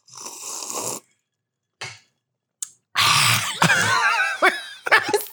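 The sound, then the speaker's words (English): A voice imitates how someone dramatically drinks water when coming to bed at night: a long noisy slurp, a few short sharp sucks, then a loud gurgling stretch that dissolves into laughter. “Oh God, when you come to bed at night and you drink your water, it's so dramatic.”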